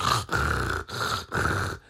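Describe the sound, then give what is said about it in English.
A voice imitates a man snoring in bed before his partner has fallen asleep, with four raspy, growling snorts in quick succession, each loud and rough with a low rumbling buzz, separated by brief pauses for breath. “You fucking snoring already.”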